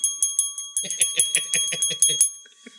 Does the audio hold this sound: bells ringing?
yes